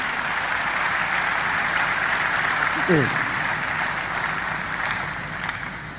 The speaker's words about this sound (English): Clap your hands for somebody else.